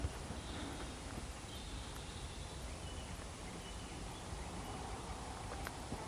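Faint, sparse dawn bird calls at about 5 a.m., from robins, thrushes and herons, a few thin high chirps and short warbles, drift over a steady low rumble of the odd bit of traffic, with no voices present.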